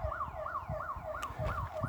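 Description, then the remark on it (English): A random alarm going off in a warehouse, heard outdoors, wails continuously, its mid-pitched electronic tone sweeping up and down in a quick, steady cycle about twice a second over a low, rumbling background. “A random alarm went off in a warehouse.”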